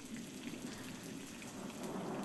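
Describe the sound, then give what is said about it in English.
Heavy rain pours down in a dense, unbroken hiss for a couple of seconds, with a low rumble of thunder underneath. The rain is steady, and no one speaks. “The result was sulfuric acid rain.”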